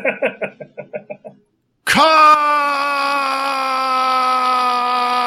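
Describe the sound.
A long, loud, sustained scream rises sharply and holds at a steady pitch for several seconds, right after a few short rhythmic vocal bursts.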